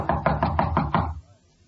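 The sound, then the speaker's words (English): Six quick, evenly spaced knocks on the door of a room at the end of a hall, fairly loud, followed by a brief quiet moment. “Knock again.”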